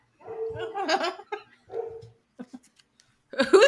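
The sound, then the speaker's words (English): A guard dog named Charlie barks in several irregular bursts, a longer drawn-out bark followed by shorter, sharper ones, loud, with no one talking over it. “Who did we make bark?”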